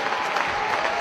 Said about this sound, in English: Crowd finally making some noise here. It's almost a packed house here today at Bearcat Arena.